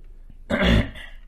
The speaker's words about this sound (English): I also had to clear my throat. I felt it at the exact same time.